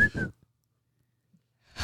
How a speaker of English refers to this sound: That was a really nice... I love that little puff of air into the microphone. Can you not whistle? Can't whistle right now.